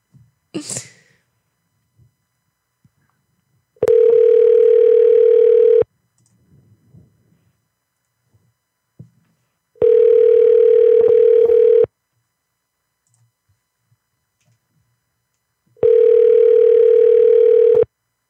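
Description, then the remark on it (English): A phone ringback tone on a call: three steady, loud buzzing rings of about two seconds each, repeating every six seconds at one fixed mid pitch, with brief faint noises in the gaps. “Let me just call your phone?”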